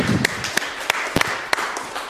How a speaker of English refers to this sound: Round of applause for everybody there.